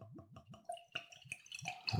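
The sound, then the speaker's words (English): Jet-black craft beer glugs and splashes as it's poured into a tulip glass, a quick run of rhythmic gurgles followed by brighter fizzing splashes, fairly quiet, with no talking. “So we're pouring it in the tulip glass right now.”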